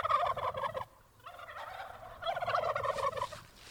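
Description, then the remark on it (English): Heritage turkeys, an old-fashioned breed, gobble in rapid, warbling bursts on a family farm in Massachusetts, three loud rounds with a short pause between, as several birds call over one another outdoors. “Ancient varieties of turkeys are enjoying a comeback, as Living on Earth's Bobby Bascom discovered down on a farm in Massachusetts, the state known for the very first Thanksgiving.”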